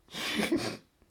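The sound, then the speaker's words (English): A single sneeze bursts out sharply, a loud breathy, hissing blast lasting under a second with a brief catch in the middle, then fades into quiet. No one speaks. “Every time you sneeze, I know there'll be the second one, so I don't have to do the Gesundheit the first time.”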